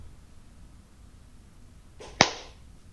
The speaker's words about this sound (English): Okay, I obviously went early, but I clapped at what was 22:05 on my screen.